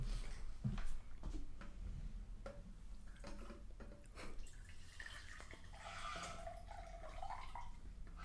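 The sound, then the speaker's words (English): Liquid is poured into a cup, with a steady trickle, scattered splashes and drips, and a gurgling tone that rises as the cup fills. No one speaks. “Here, pour it into the cup.”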